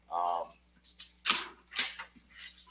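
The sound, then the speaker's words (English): Papers rustle in a few short, crisp crinkling bursts, each one sharp and hissy, following a brief hummed vocal sound at the start. “I wanted to show you, I'm rustling these papers. I'm sorry if it's making some noise.”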